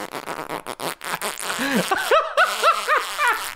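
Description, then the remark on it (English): A long, squeaky fart that sputters through a rapid series of high, whiny tonal bursts, fairly loud, with no talking over it. “30-second farts, tightened.”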